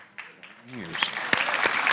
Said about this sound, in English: Yes, clap at that.